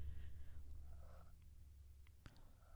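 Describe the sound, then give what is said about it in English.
A cat on a creaky table purrs in a steady low rumble against the microphone, with soft brushing noises and one sharp scraping bump as it rubs its face on the mic. “Sorry, if you hear noises, our cat will not leave the table. But he's so cute. He's scratchy his face on the mic.”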